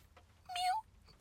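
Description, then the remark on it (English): A person imitates a cat's meow with a single short, whiny tonal note that rises slightly, fairly clear. A sudden loud burst of noise cuts in right at the end. “You guys know what a real meow sounds like.”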